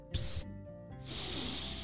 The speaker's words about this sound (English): Santa reached down on one knee and picked up the spray bottle out of Mr. Kazoo's hands. He sprayed it once.